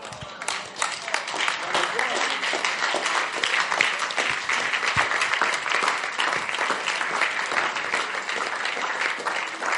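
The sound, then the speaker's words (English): A large audience claps steadily and loudly for about ten seconds, dense overlapping applause with a few faint voices mixed underneath. “I'm surprised you are clapping.”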